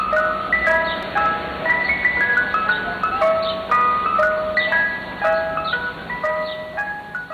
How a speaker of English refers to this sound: a …, which begins with the Mr. Softy truck theme